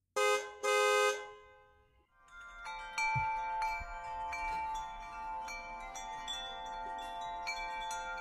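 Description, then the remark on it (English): Two loud, blaring car horn honks, followed by a brief pause and then a long cluster of bright, ringing wind chimes tinkling and overlapping continuously until the end. “So let me play those two samples back to back. Here's the car horn and the wind chimes.”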